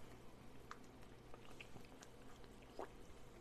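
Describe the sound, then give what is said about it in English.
Quiet sounds of someone drinking water: a couple of soft swallows and small liquid slurps over a low steady background hum, with no talking. “and I'm also making sure that I'm drinking water.”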